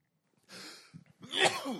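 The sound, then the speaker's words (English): A single sneeze: a breathy intake, a brief pause, then a loud, noisy burst with a voiced edge. No talking is heard. “God bless you.”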